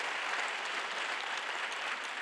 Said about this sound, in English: Can I hear a shout and a clap to God this morning? May the Lord do it.